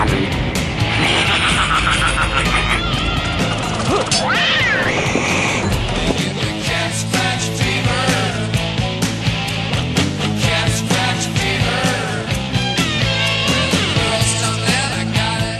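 A loud hard rock track plays, with gritty distorted electric guitar, squealing bent notes early on, and a steady pounding drum beat driving through the whole stretch.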